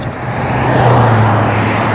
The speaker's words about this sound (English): Okay, I'm in the middle of the freeway now. Those are the cars passing by. They're like going, oh shit, I'm scared.